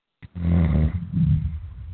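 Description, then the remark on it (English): A person snores loudly, one long rattling inhale followed by a rougher, throaty breath, with no talking. “Somebody's snoring.”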